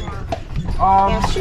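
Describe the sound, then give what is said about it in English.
Horse hooves clip-clop at an easy, steady walking pace as a horse-drawn taxi carriage rolls along, heading back to town, with indistinct voices murmuring underneath. “After lunch, we headed back to town in our horse-drawn taxi.”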